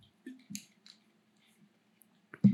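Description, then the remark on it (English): Someone drinks water: a few faint wet sips and mouth clicks spread over a quiet stretch, ending in a louder swallow. “Go ahead, take your water.”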